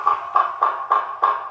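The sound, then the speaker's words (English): Yellow-bellied sapsucker calls: a quick, steady series of five nasal, mewing notes at a mid pitch, evenly spaced and fairly loud, with no talking. “Listening to some yellow-bellied sapsuckers.”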